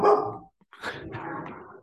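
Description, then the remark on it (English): A dog barks sharply, one loud bark, a brief pause, then a longer rough burst of barking, with no one speaking. “Dog likes the pick.”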